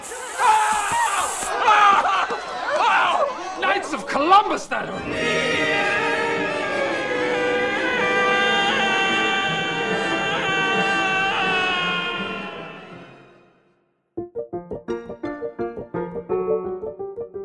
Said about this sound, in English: the two screams you just heard came from Will Ferrell in Anchorman and Mark Hamill as Luke Skywalker in The Empire Strikes Back.